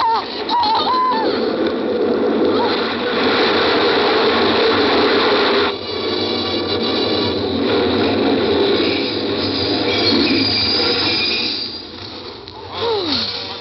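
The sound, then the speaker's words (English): A train pulls in loud, a steady mechanical clatter and rumble with brief high squeals of brakes near the start and again at the end. No one speaks. “You nearly fell right in front of that train.”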